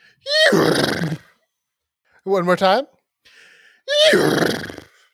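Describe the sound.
A voice mimics an eerie doorbell rung by trick-or-treaters, with two loud, drawn-out groaning tones that slide downward in pitch, separated by a brief spoken phrase between them.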